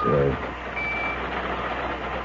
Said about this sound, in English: What the hell is that noise? Oh, sorry. I've got a pocket alarm watch, and it keeps trying to tell me something.